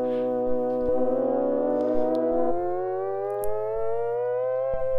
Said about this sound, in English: It sounds like a tornado siren.